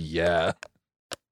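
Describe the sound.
A battery pack magnetically snapping onto the back of a phone: two short, sharp clicks about half a second apart, heard right after a burst of speech.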